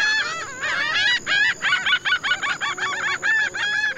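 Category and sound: bird, birds calling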